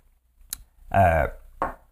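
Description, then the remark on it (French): Someone takes a sip of water to wash down a piece of popcorn: a sharp little click like a glass, then a short voiced gulp in the throat, followed by one more soft burst. No talking. “J'ai un morceau de popcorn là, qui me prend une gorgée d'eau.”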